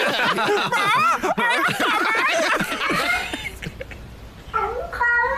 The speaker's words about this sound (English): so not only is it a talking cat, it's a talking cat that does a Bane impression